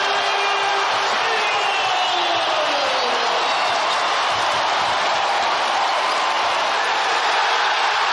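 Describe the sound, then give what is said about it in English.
A packed arena crowd at the Garden roars and cheers wildly during a basketball game, a dense, loud wall of noise that stays at full intensity for the whole stretch without letting up. “And the Garden going completely nuts.”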